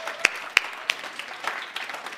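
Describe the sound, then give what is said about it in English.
An audience begins clapping for the children: three sharp, loud claps ring out first, then scattered softer claps patter unevenly from several people, with no one speaking. “Let's clap for our children.”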